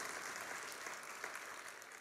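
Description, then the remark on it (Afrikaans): A church audience claps for the worship team, many hands blending into a dense, continuous wash of applause that holds an even level throughout, with no voices standing out. “kan ons vir die worship span een lekker hande klap gee, hulle was awesome.”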